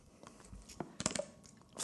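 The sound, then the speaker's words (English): Someone takes a drink of water: a short run of faint sipping and swallowing noises with wet mouth clicks, ending in a slightly louder gulp. No one speaks. “Was that funny how I drank that water?”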